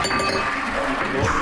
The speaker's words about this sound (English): A pint glass has gone right over. Oh, that was a close... Is that an omen? Is there a spillage there?